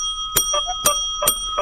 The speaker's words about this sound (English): I'm going to go 3, 2, and 1, and then I'm going to hit the bell, and you're going to hit the wacky horn at the same time.